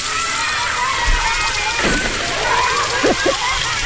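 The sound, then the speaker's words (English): Water splashes over a steady, hissing rush of spraying water, water being wasted on an odd-numbered day. A few brief splashes stand out near the middle and end, with faint voices in the background. “There's Wasting Water on an Odd Numbered Day.”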